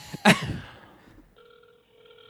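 A short clatter sounds at the start, then the steady electronic ring tone of an outgoing phone call hums through the line, clear and moderately loud, with no voices.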